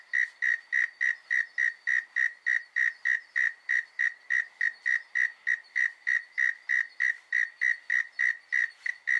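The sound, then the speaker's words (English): A frog calls over and over in a steady, fast rhythm, about three high, whistle-like notes a second, clear, with no voices and nothing else heard; recorded at night through a back window in Sydney. “And he stuck his microphone out his back window and he got the most beautiful frogs, especially for you.”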